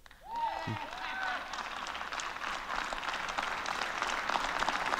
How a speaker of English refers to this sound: Seems like there's more than... five people clapping.